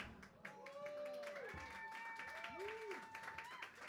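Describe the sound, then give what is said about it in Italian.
A live audience at a show in Florence gives an ovation, clapping steadily for about four seconds in a dense, even patter, with cheering voices and a few rising and falling whoops or whistles over the top. “e questo è l'applauso del volume del Soul Folks in diretta dal volume di Firenze.”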